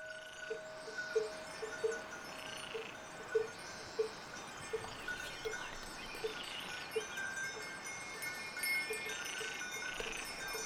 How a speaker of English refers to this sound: and ran down there and got as close as I could to these cows and got this beautiful recording of just all this sort of stereo panorama of all these different cowbells mixed with little chirping frog sounds. And it was exactly the thing that I needed.